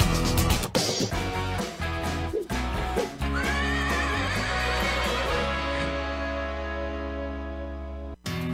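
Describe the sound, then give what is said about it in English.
A horse lets out a loud, drawn-out whinny that rises and trembles over a steady backing of music, with a few sharp percussive hits near the start, opening the Horse Talk Show on Florida Sports Talk. “You never heard of a talking horse? Well, listen to this.”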